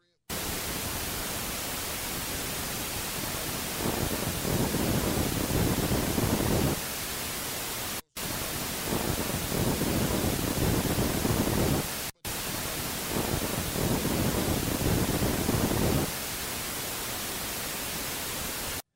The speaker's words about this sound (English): And this is the last one from the storm cellar again, 12:40 in the morning. And this is unusual. It's a type of static, and the tape recorders we use, they don't produce sounds, they just record sounds.